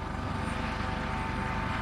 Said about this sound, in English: Wait, do you hear it too? A helicopter. El helicóptero.